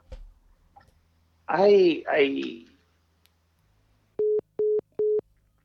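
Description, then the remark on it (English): A dropped phone call: a brief burst of muffled, garbled voice, a pause, then three short, evenly spaced electronic beeps of a disconnect tone, clear and steady. “I think … we lost the phone connection”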